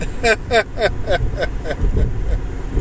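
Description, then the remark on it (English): Steady low rumble of a car interior used as a mobile recording studio, engine and road noise droning continuously beneath a person's voice speaking in short bursts. “I'm coming to you live and loud from the mobile car studio with today's episode.”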